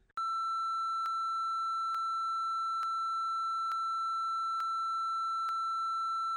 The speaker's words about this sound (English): And there's just going to be, like, a long beep. And it's going to confuse everyone. And everyone's probably going to be able to work it out.